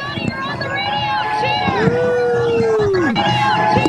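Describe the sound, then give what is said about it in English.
A crowd of summer camp campers cheers on Rival Day in summer 2021 for a radio broadcast, shouting loudly and continuously, many voices overlapping in a dense roar, with one sustained high whoop rising and holding before breaking off. “Well, but it's extremely loud in here. It's time for Rival Day. Everybody, you're on the radio, cheer!”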